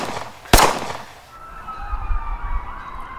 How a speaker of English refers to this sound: Last night, the gunshots outside of my window intervened with my dream.